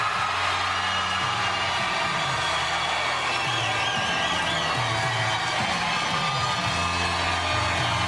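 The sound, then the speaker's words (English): A crowd cheers and applauds steadily for about eight seconds for the first contestant, voting by applause to pick a winner: a dense, loud wash of clapping with scattered whoops and yells rising above it. “we're going to do this by crowd applause”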